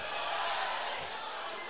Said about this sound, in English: Starting the runner and Luke Hancock getting that ball into the right field corner kind of got the crowd into it a little bit, and the crowd's still going here an hour after the ball game.